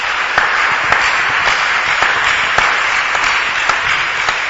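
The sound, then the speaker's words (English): A crowd claps for Jesus in worship, a steady, dense, loud wash of many hands with a few sharper individual claps standing out at irregular moments throughout. “Why don't you clap for Jesus?”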